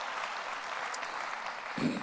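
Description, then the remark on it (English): An audience claps their hands in praise of God in a steady, dense wash of applause with no individual claps standing out, swelling slightly near the end. “Somebody clap your hand and praise him for that.”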